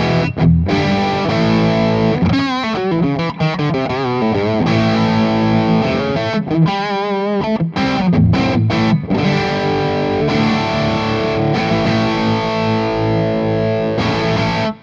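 An electric guitar played through a distortion pedal, with the pedal's tone control dialled down to just below 9 o'clock, plays sustained, dense chords and a few wavering bent notes, loud and saturated throughout with a buzzy, compressed tone and no talking.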